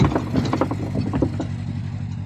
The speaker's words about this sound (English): Sorry, a boat just went past. Right, I wonder what. That's why it sounded like there was an earthquake. That wasn't me trying to break out the prison block.